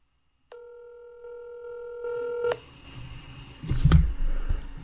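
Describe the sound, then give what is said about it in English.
A telephone ringback tone on a call to the speaker's father sounds once as a steady two-second electronic ring, then cuts off into quiet rustling and a sudden thump, with nobody picking up. “He probably won't answer.”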